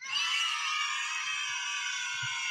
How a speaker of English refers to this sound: Those were the kids at McMaster Hospital cheering you on.